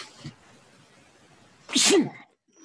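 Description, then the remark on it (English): A single loud sneeze bursts out, a sharp hissing blast with a voiced, rising-then-falling cry, preceded by a faint brief sound and followed by near silence. “Bless you, dear.”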